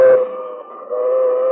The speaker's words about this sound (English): And here comes the train.